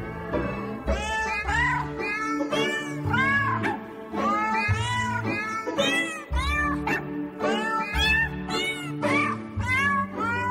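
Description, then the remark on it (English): A rapid string of cat meows pitched up and down to carry a happy birthday tune as a birthday greeting, loud over a steady low musical backing, with no one speaking. “thank you, Benny, for the cat one, because you know I'm such a cat person”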